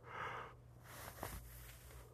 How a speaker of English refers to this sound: There I go. I yawned. I would have yawned anyway. I don't know why I tried to not.